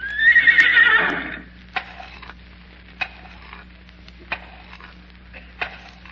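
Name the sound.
horse neighing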